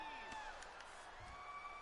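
An arena crowd chants "DC" steadily, a dense wash of many voices with drawn-out sung tones rising above the roar, continuous throughout.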